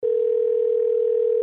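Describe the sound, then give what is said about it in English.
A steady telephone ringback tone on an outgoing call hums without a break, fairly loud, with no voices present. “Well, this is ringing way too long to be a voicemail.”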